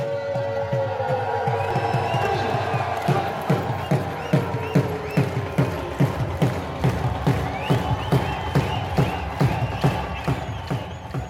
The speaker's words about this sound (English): and they will march up and down as the flags are lowered, and as the Indian crowd roar, then the Pakistani crowd roar. Another little bit of craziness, but it's so much fun there.